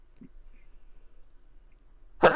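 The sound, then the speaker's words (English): After a couple of seconds of near silence with one faint short sound, a sudden loud, breathy sneeze bursts out and is cut off at the end. “Another thing for the Zoomers to be mad about with the RSP cast audio is that I cough and sneeze occasionally.”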